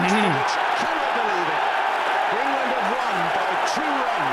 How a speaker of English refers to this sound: Yeah. One of the great test matches of all time. Yeah. So you can listen to the crowd noise there and get right into it.